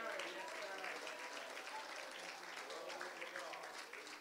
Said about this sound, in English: Praise God. Let's clap our hands again.